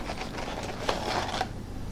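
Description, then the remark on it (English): A dog munches on fast food, french fries: a few soft, crunchy chewing clicks, irregularly spaced, over a steady hiss of background noise, with no talking. “I hear my dog fucking munch on fast food.”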